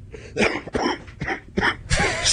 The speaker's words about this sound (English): That made me laugh. That was a cough laugh.